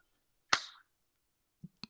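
A single sharp hand clap, made after a 3, 2, 1 countdown to sync recordings, rings out in near silence with a brief fading tail, followed about a second later by a couple of faint, soft taps.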